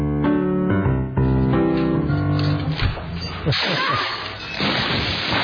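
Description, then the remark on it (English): A woman falls from a ladder and crashes through glass: a sustained tonal, music-like opening gives way midway to a loud, noisy burst of crashing and shattering that lingers to the end. “do we have something to do the falling woman, too? The falling the woman? Falling, the ladder?”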